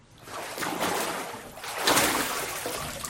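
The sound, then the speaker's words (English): Water splashes and sloshes during a water baptism in two broad surges, a rushing wash of sound that swells, eases, then swells again before settling into a softer trickle. “And do you desire to follow the Lord in obedience and water baptism?”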